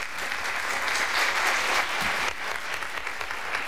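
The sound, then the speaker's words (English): Sustained applause from a large studio audience in 1967 as Dr. Martin Luther King comes on and Merv gets up again to give him more applause, a dense steady wash of clapping that swells slightly mid-way and continues without pause, no voices standing out. “They're about to sit down, and then Merv gets up again to give him more applause.”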